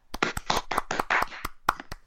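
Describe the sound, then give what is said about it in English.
A short round of applause for a fighter: a few pairs of hands clapping in quick, uneven bursts of sharp, crisp claps for about two seconds, with no voices. “round of applause for Seaman Leave-In.”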